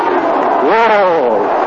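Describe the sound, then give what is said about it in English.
A baseball stadium crowd at a Dodgers game roars in a steady wash of noise in the top of the ninth inning, then a collective yell swells up and rises, peaks briefly, and slides back down as Erskine throws a curveball. “The crowd was trying to give vocal English to that pitch.”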